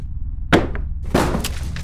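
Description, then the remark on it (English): Glass smashes in two loud bursts, the second followed by a bright scatter of shards lingering for almost a second, over a low background rumble. “Rebecca, put down the glass.”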